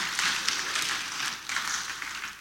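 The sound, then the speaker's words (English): An audience at a ministry gathering claps together in a dense, steady wash of applause that holds at an even, fairly loud level for the whole stretch, with no voices standing out. “Yeah, you can clap, that's awesome.”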